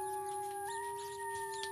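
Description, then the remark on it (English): Wolves howl together in long, sustained, overlapping tones, one voice sliding slightly upward partway through, steady and fairly loud throughout the short stretch with no talking. “I brought wolves. He brought wolves.”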